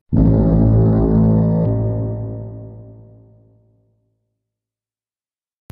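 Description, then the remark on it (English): A single loud, deep blast from a ceremonial foghorn sounds alone, holding a rich low tone for over a second before slowly fading into silence, followed by a brief click. “Oh, that's a ceremonial foghorn.”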